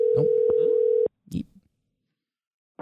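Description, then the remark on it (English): A steady, loud ringback tone of an outgoing telephone call hums for about a second over faint background voices, then cuts off, followed by a brief muffled voice and quiet. “So we'll give him a call.”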